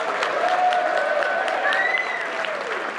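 A crowd applauds on a count of three as a vote for one of two candidates, breaking into steady, dense applause that keeps going at an even loudness, with a few high whistles and cheers rising over the clapping.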